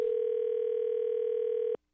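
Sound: telephone call ringing through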